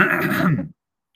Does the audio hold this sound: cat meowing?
no